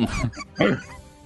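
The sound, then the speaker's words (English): A person imitates a curious dog with their voice: a rough, throaty grunt followed by a louder rising whine, with no words. “It like takes a sniff towards the snake, barks at it once, and then looks at the three of you kind of quizzically.”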